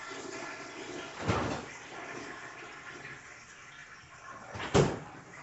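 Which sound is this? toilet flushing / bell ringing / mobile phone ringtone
toilet flushing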